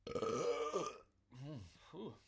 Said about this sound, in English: Oh, that burp was a -4. Ugh. I had a good one.